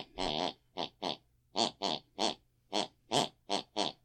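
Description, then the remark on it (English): A woman snoring in her sleep in a quick series of about eleven short, grunting snorts, evenly paced with shifting pitch so they follow a sing-song, tune-like pattern. No one speaks. “Her unconscious mind picks and pulls her mind and she snores that very tune. Let's have a listen.”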